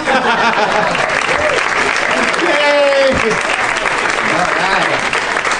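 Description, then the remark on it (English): A large audience claps loudly and steadily for several seconds, a dense wall of applause with a few cheers and voices mixed in, sustained throughout, as comedian Sarah Silverman comes out as a guest on a show that also has Harris Wittels as a guest. “Did you hear how loud they clapped for me after she came out?”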